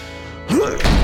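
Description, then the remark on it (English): A steady low hum gives way to a sudden loud slam of a door onto a person's thumbnail, a short rising squeal, then a second heavy thud that rings out to the end. “I'm holding the door back as far as I can,”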